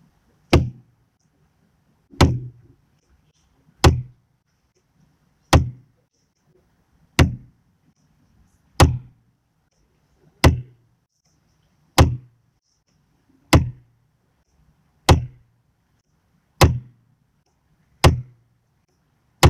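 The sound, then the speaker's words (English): Loud, sharp knocks strike one at a time at a slow, steady pace, about every second and a half, each with a hard attack and a short, low boom, with no voices in between. “Each knock represents someone trapped in an evil institution that left them vulnerable to rape, torture, and murder.”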